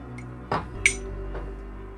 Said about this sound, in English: Cheers, clink. I tried to clink. You hit it with your wedding ring.